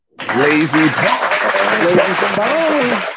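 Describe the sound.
A burst of applause starts abruptly and holds steady for a few seconds, mixed with loud whooping and cheering voices close by.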